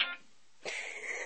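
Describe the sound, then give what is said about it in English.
A phone that someone forgot to silence rings with a bright electronic ringtone: a short tonal burst, a brief gap, then a longer, steady high-pitched ring. No one speaks. “Somebody forgot to silence their phone.”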